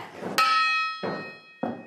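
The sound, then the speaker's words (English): A large bronze church bell, tarnished green, is struck by hand without its clapper in Herefordshire, giving one sharp metallic clang whose bright, slightly dissonant tones hang and slowly fade while two duller knocks follow. “That's nothing like the way they sound when they're up there with a with a proper clapper ringing.”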